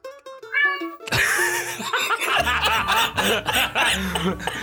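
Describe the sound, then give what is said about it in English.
A cat meows in several rising, wavering cries over a busy, noisy background, with people laughing and chuckling. A short steady tonal passage plays before the noise begins. “Cat. You can't do this to us.”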